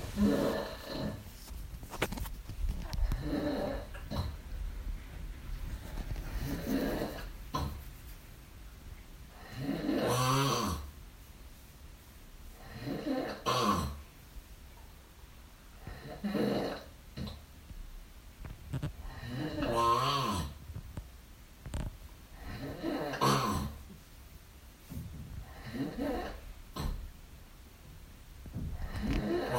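A man snores loudly during the night, with rough, rattling snores every few seconds separated by quieter breathing, otherwise still with no talking.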